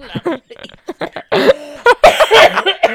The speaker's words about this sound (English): What don't make me laugh then, because when you make me laugh, you make me cough.